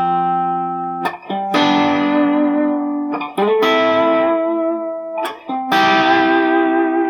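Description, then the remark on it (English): Electric guitar strums sustained chords with effects, three long ringing chords separated by brief choppy transitions, loud with a bright, slightly distorted tone and no voices. “Again, thinking of sort of building it up, you could start, I guess, just with the chords.”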